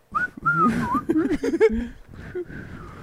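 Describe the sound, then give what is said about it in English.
A person tries to whistle close to the mic, producing a few short, wavering tones that break off amid breathy, voiced sounds and stifled laughter, never settling into a steady tune. “you're going to walk backwards slowly while you're whistling into the evidence room”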